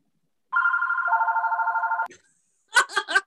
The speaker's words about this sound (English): That's my gay, the gay bat phone. They're calling you back in to the group.